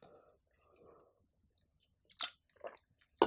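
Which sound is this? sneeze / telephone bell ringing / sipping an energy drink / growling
sipping an energy drink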